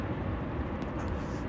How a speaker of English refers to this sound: Airplane is flying over right now, overhead right now as we speak.